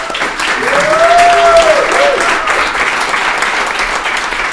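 Steady audience applause for event host Startup Edmonton, a dense wash of many hands clapping at an even loudness for several seconds, with a brief rising-and-falling whistle or whoop heard over it early on.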